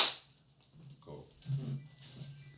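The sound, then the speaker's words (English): One sharp hand clap, made to sync audio and video at the start of a recording, cracks at the very start, then gives way to a steady low hum with faint shuffling and muffled bumps. “Let me just, I just want to do a clap sync.”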